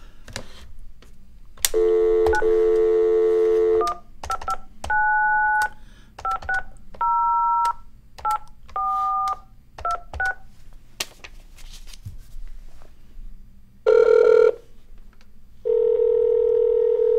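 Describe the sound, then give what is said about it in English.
A steady dial tone gives way to a quick run of touch-tone keypad beeps as a phone call is placed, then the line starts ringing with a couple of ringback tones. Clear, with no one talking. “And while that's ringing, when was Thanksgiving?”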